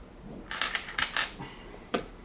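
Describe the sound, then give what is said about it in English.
Many dice being rolled: a quick flurry of hard clattering clicks tumbling across a surface, followed after a short pause by one last sharp clack. Fairly loud, with no voices. “And these. A lot of dice.”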